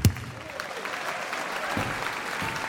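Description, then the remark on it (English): A boxing crowd applauds steadily as punches land in a fight, dense clapping filling the whole moment with a faint undertone of cheering voices, fairly loud and continuous from start to finish. “Colossal punches thrown and missed by Bronson were followed by astonished gasps from the crowd, and punches landed by Jimmy were met with cheers and applause.”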